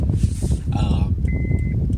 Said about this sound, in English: Sorry about this beep. I thought I had connected my seatbelt, but I guess it wasn't all the way connected.